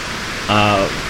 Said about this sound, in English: That's not feedback. That's the rain. No, I understand it's rain. Do you want to switch to the mic? If it gets louder, then yeah, we'll switch. But it sounds like it's going to get louder.